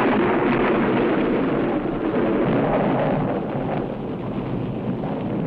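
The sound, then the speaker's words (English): A loud, steady roar of rolling thunder from a lightning strike fills the whole stretch, a dense rumbling wash that barely swells or fades, with no voices present. “Did you see that? Lightning? Of course I did.”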